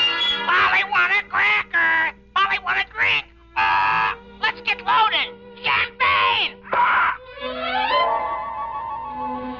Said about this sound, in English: Ladies and gentlemen, you have just met Caesar the Parrot, a sort of feathered candidate for Alcoholics Anonymous. Yes, Caesar really loves his champagne, but he isn't getting much of it these days.